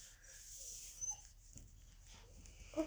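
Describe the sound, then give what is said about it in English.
A dog whines softly in a few thin, high-pitched whimpers, quiet, with a faint airy hiss in the background and no one talking. “Pod dog's pod dog's whining.”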